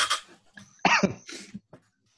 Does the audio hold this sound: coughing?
yes